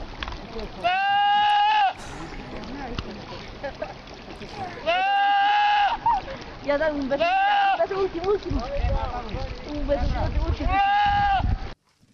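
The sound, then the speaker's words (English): A young goat (a kid) gives four loud, drawn-out bleats at uneven intervals, each with a strained, strikingly human-sounding quality like someone yelling, with a rough noisy background between the cries. “I mean, this is an unintentional imitation, but a great one nonetheless. It's a goat.”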